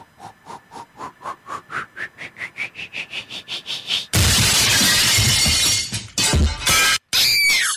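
A precious vase shatters in a loud crash with scattering fragments as a vinyl record, thrown like a frisbee, hits it. A rapid series of rising, pulsing tones comes first. A few shorter crashing bursts follow before it ends, and the record is destroyed too.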